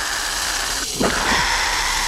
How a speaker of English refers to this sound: And so when you're choosing how to design the sound of creatures that don't actually exist, what's the emotional impact of bird sounds versus this rattlesnake sound right here?